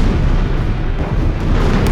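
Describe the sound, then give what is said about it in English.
Heavy, continuous low rumbling of explosions rippling through a German military base under ground attack, set off by Lewis bombs, booming and rolling one into another with no pause, loud and dense throughout, like a barrage. “More and more explosions rippled through the base”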